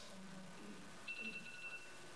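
A mobile phone rings faintly, a short burst of bright, pulsing electronic tones lasting under a second over quiet room noise.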